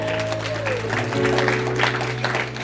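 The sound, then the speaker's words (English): A crowd claps steadily and densely over sustained organ or keyboard tones, with a gliding pitch early on and a few voices mixed into the applause. “Get ready to clap.”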